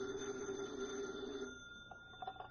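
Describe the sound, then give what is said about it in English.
A desk telephone at an FBI field office rings in one steady, buzzing burst for about a second and a half, then fades, leaving faint background noise and a few soft clicks. “Special Agent Jim Taylor is at his desk when his phone rings.”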